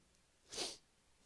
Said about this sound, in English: Bless you. My goodness. You feel better?